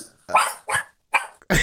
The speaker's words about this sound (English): As the dog barks.